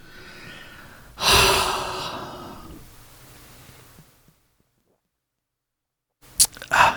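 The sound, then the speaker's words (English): A breathy sip from a drink swells and trails off, followed by a couple of seconds of near silence and then a few short, sharp mouth and breath sounds. “Sorry, I needed a sip.”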